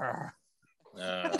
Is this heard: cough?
no